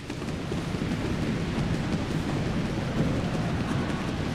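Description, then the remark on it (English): Dense, steady rumbling patter of many feet stomping together, imitating a heavy downpour, loud and continuous throughout with a thunder-like low roar and no voices. “Really coming down now.”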